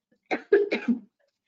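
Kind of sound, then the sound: human body sound, cough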